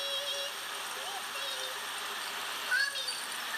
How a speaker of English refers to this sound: I hear water.